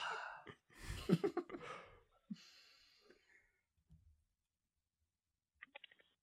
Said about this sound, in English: Why do they do the fake typing? It's user experience.